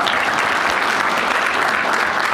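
Steady audience applause, a dense, even wash of many hands clapping at a loud level throughout, with no pauses and no voices standing out.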